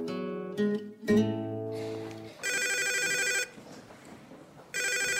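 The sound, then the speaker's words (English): A telephone rings in two loud, buzzing bursts with a pause between them, coming right after a few brief sustained musical tones. “Went the phone.”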